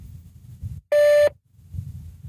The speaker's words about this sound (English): So thank you very much, and you can leave your message after the tone.